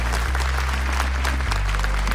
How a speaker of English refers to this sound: Could everyone join me in giving an enormous round of applause to Tanya Plibersek?